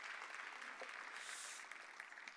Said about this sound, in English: Everyone give Adam a round of applause.